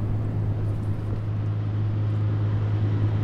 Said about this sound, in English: I was gonna wait for all these boats to go by, but there's a dick load of boats, so let's just power through, shall we?